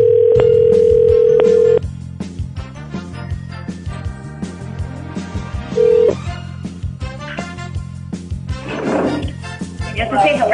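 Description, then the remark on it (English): A steady telephone tone sounds for nearly two seconds, then a short second tone, as an outgoing phone call is placed to a cell phone, while busy music or background sound plays underneath throughout. “We're going to pick up the phone and we're going to call our winner”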